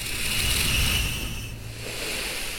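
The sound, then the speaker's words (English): A steam iron hisses steadily, a broad rushing noise with a faint high-pitched whine riding on top and a low rumble underneath, dipping briefly before resuming. “It is the hiss of a steamy iron.”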